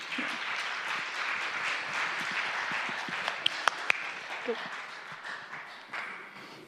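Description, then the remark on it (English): A church audience applauds a group of people before the sermon, steadily for several seconds, a dense, even wash of many hands clapping, with a few sharper individual claps standing out near the middle and murmured voices underneath. “So we'll give these guys a round of applause.”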